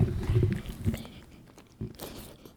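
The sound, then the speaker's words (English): A dog named Ron licks his penis with wet, smacking slurps in an irregular run, loudest at first, then fading to a few softer laps with brief pauses between. “He's cleaning himself.”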